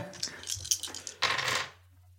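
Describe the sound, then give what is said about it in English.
Four dice clatter across a hard tabletop: a few sharp clicks, then a quick burst of rattling as they tumble and settle. Fairly crisp, with no talking. “To be fair, I roll 4 dice right now.”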